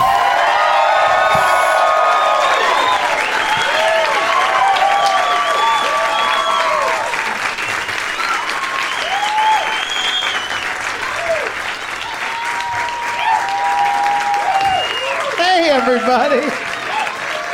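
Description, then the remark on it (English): A live stand-up comedy audience at the Punchline Comedy Club in Atlanta, Georgia breaks into sustained applause and cheering, dense clapping filling the whole stretch with scattered whoops and shouts rising above it, loud and steady throughout. “Hot crowd in Rainlanta.”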